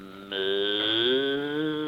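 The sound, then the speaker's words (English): A cow lets out one long, drawn-out moo, loud, with a rich, droning tone that swells slightly partway through. No one speaks over it. “Get away from that cow.”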